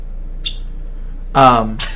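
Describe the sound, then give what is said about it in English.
A cork pulls from a bourbon bottle with a single short, high squeaky pop, followed a moment later by a brief burst of a voice. “Wait, why was your cork pop better?”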